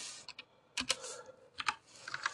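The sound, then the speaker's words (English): Crisp computer keyboard clicks tapped in uneven bursts of a few keys at a time, with brief pauses between, no voices present, as someone clicks while searching for a quote. “Let's see if I can find the quote because we're clicking on things”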